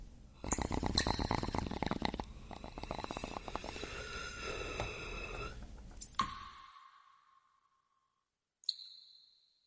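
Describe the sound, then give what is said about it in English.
Water gurgles and bubbles through a glass bong for several seconds, then the glass clinks sharply with a ringing tone that fades, followed by one more light clink after a brief pause. “I lost my bong again. How does this... There it is. I found it.”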